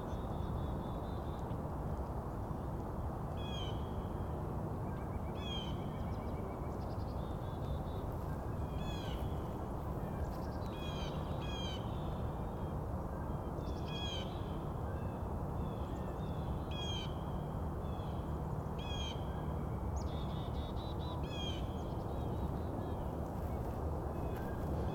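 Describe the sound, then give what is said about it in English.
Crows caw repeatedly in short, harsh bursts, several birds calling back and forth over a steady, loud low rumble of background noise, in an open meadow of mostly lawn with scattered spruce and pine trees in an arboretum. “Crows might also be migrating, can't be sure.”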